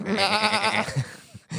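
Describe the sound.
A voice imitates a sputtering engine, producing a wavering, bleating buzz that sounds much like a goat, loud, breaking off after about a second before a brief resumption.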